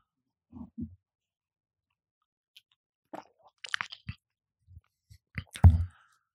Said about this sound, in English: Now, what I wanted both of you to do real quick is take a sip of water.